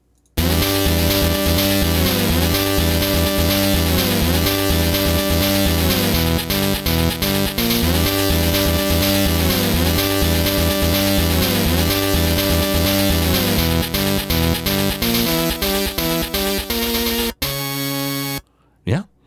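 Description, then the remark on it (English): Virtual Boy Wario game title screen music, played after an image of Wario flying off in a plane, loud and steady, a bright synthesized melody over a repeating bass pattern for about seventeen seconds, then cuts off into a brief different snippet. “let's go ahead and play the this is the title screen music after it shows the little image of Wario in a plane flying off or whatever.”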